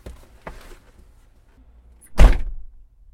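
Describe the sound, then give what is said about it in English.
A car door shuts with a single heavy, muffled thunk as someone gets out of the car, preceded by a few faint rustles and clicks of handling, then quiet as the sound dies away. “I'm going to get out of the car, because I'm sorry.”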